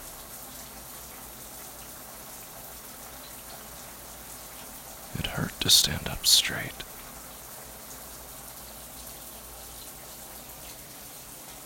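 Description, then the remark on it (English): A steady, even hiss of running shower water with a man standing under it fills the background throughout, with a man's voice speaking briefly over it partway through. “His back ached under the water.”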